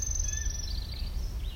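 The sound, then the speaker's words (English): A song sparrow sings a short run of high, thin whistled notes, heard over a steady low rumble of outdoor background noise. “Anything that sounds like hip, hip, hooray, boys, I assume it's a song sparrow, unless it's something else.”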